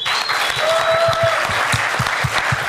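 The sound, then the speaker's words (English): Steady applause from an audience responding to a question about who is excited about Microsoft's Atlas (ASP.NET Ajax) technology, a dense wash of many hands clapping at a sustained, fairly loud level throughout, with a faint whistle-like tone briefly riding over it. “Do some ratings of the clapping.”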